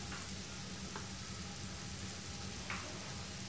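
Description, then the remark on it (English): Shiitake mushrooms sizzle steadily in hot oil in a pan over medium-high heat, a dense, crackling hiss with occasional sharper pops, continuous, with no voices. “You hear that? You wanna hear a little sizzle, man.”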